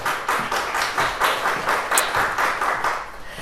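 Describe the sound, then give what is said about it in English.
Steady applause from an audience welcoming newcomers attending for the first time, dense overlapping hand claps with a brisk rhythmic pulse, fairly loud and sustained throughout with no voices. “If this is your first time here, I want you to know that you're not the only person who it's your first time here, and we'd like to welcome you all with a very warm welcome and a big hand of applause.”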